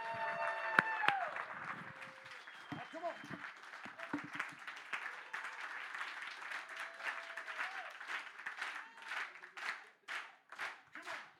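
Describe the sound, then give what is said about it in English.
A crowd claps along to a gospel song in a dense, sustained wash of applause, loose at first and then settling into clearer rhythmic beats toward the end, with a few voices calling out over it. “Y'all ain't clapping right.”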